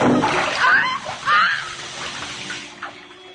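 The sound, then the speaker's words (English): A razor splashes into water, followed by a few messy sloshes and splatters that churn loudly for a moment before settling into a quieter trickle. “Oh, no, not in the water, Charles. Charles, please don't.”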